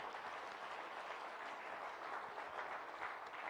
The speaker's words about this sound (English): So can we give God a big hand clap and say, bless the Lord?